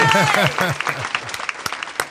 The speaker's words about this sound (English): Oh, wait a second. Where's my applause music? Yay!